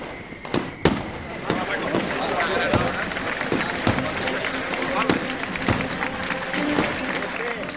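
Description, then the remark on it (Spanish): A rapid, irregular barrage of sharp firecracker bangs, a mascletà at the Fallas festival in Valencia in March, cracks out over a dense, roaring background of crowd noise, the loud explosions crowding close together throughout. “Tres momentos esenciales de estas fiestas son, primero, los fuegos artificiales, que en valenciano se llaman las mascletas.”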